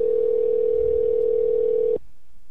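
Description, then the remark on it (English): A steady, loud telephone dial tone, heard while calling back a caller who was cut off, holds one unbroken pitch for about two seconds, then cuts off abruptly into near silence. No one speaks. “Let's see if we can get him back on the line there, see what's going on.”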